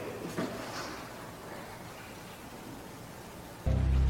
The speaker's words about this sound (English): This fountain right here has that hollow tone behind it. It's actually the sound behind the falling water. It's like a hollow, and you can hear different words.